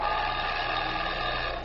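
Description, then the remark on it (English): A telephone bell rings in one steady, continuous burst, loud and metallic with a bright, buzzing trill and a low hum underneath. No one speaks. “The phone over here is ringing.”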